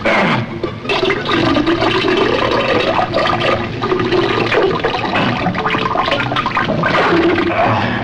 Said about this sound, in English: People are flushing toilets 10 times, 15 times, as opposed to once. They end up using more water.